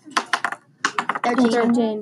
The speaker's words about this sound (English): Roll your red dice, both of you.